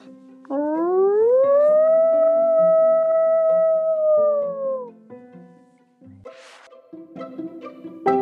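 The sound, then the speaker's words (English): A single long, loud howl swoops upward, holds a steady wavering pitch for about four seconds, then trails off, followed by some brief clattering and rustling noises. “He put his head down, put a paw forward, and gave a great howl.”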